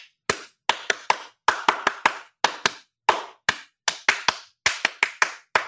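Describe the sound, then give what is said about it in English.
Microsoft store staff stand clapping to attract attention: hands clap sharply, around twenty crisp claps in uneven bursts with brief pauses between groups. No talking, just the bright smack of each clap. “I saw Microsoft opening up their things and they're all standing there doing this. Like they're all clapping.”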